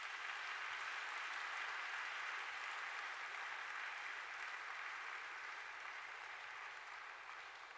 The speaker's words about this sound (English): Praise the Lord. Can we give Jesus a clap offering for this?